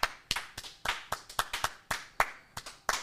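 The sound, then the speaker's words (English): Thin, scattered applause from a studio audience: a dozen or so sharp, loud claps in an uneven, loose rhythm rather than a full roar, with no talking. “Round of applause from the studio audience, please.”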